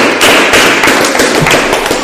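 A group of people applauds: dense, steady clapping with many overlapping sharp slaps, loud and continuous throughout, with no voices on top.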